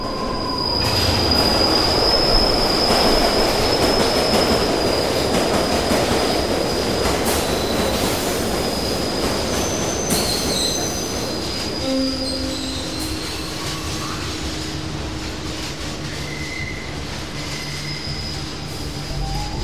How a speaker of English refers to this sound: Just as the train is about to burst out of the tunnel, he steps up and pushes the other one right in front of the train.